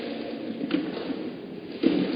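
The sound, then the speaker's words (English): Chairs being moved around and set down as people place ten chairs, with two distinct knocks about a second apart over a low, steady background rumble. No one speaks. “Can you put 10 chairs here?”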